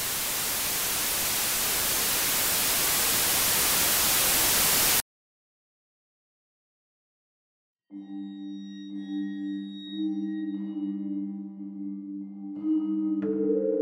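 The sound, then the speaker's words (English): A loud burst of static hiss from a television tuned to dead air fills the first few seconds, then cuts off abruptly into silence before a low, steady electronic drone with faint high tones fades in. “And then you would turn the TV to static and just watch dead air for 30 minutes.”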